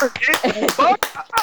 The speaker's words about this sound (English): Clap it up. See that baby.